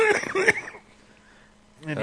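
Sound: cough into the microphone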